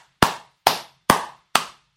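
Slow, deliberate hand clapping: about five sharp, crisp claps evenly spaced roughly half a second apart, each with a short ring-out. One person's clap rather than a crowd, with no talking.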